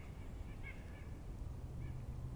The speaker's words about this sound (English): Man, those nuthatches are going crazy.